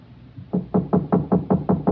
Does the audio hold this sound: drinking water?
no